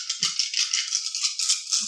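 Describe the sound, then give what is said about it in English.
A handful of dice rattles continuously as it is shaken and rolled for a dice-pool roll with bonus dice in a game, a bright clattering shake that pulses in quick uneven bursts with a couple of soft low knocks, and no voices. “So you get two bonus dice to this roll.”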